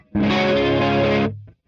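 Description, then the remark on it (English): A single distorted guitar chord, played through an effects unit set to setting 2, rings out loud and sustained for about a second, thick with harmonic buzz and a shimmering chorus-like texture, then cuts off with a low note lingering briefly. “It's like too crunchy to be clean and too clean to be crunchy for me.”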